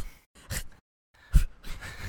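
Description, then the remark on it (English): A person imitates a dog huffing: several short, breathy, noisy snorts and puffs of air in a quick irregular series, with a brief pause in the middle. No words are spoken. “That was some good dog huffs.”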